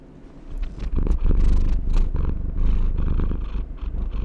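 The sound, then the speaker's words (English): A male cat purrs right up against the microphone, a loud, continuous rumbling with a steady rhythmic pulse and faint rustling, lasting a few seconds with no talking. “He's just purring.”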